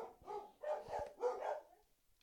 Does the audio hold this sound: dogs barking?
yes